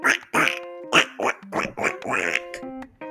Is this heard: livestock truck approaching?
no